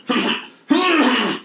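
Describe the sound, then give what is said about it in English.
A person imitates two throaty coughs of a man who stood up from his seat two rows ahead during a screening, one short then a longer, rougher hack, fairly loud with a brief pause between. “And you've got the silhouette of this guy sitting two rows in front of him, gets up, coughs again, and then walks out of the bathroom.”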